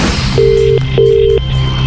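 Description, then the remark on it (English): A telephone line rings out with two short, steady ringback tones in quick succession as a radio show calls the winner of a prize draw, heard clearly over a low background hum, with no one speaking. “So 60 people were there yesterday, clung to their phones when Wayne and Lorraine made the call.”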